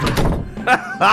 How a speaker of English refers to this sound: Atlas quickly closed the door and locked it.